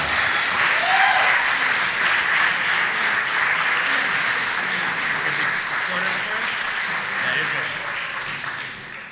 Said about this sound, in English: so please clap for